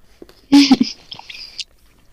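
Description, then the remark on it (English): Chewing on a sticky, dense, triangular Swiss chocolate bar with honey and almond nougat: a sharp bite, then wet, crackly mouth noises over about a second, fading into quiet. “Let us know what your thoughts are as you munch down on the Swiss chocolate.”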